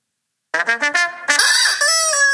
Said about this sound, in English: Is that a pig? It was a rubber chicken.